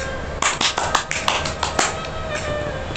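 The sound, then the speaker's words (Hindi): Loud applause: a rapid flurry of sharp, irregular claps bursts in, rattles for about a second and a half, then fades into a steady background hiss with no one speaking. “निर्वेश के लिए जोरदार तालियां।”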